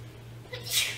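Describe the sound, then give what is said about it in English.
A single short sneeze bursts out, a sharp hissy puff over a steady low background hum, with no talking. “I bless you.”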